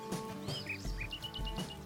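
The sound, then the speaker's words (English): Birdsong with bright chirps and a rapid series of short, high tweets, clear over a soft background of low ambient sound, with no voices. “Protecting natural acoustic environments is important to protect wildlife, and so that people can still enjoy the sounds of birdsong and the wind through the trees.”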